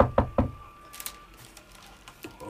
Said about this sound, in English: Okay, you knock on the door. There's no immediate answer.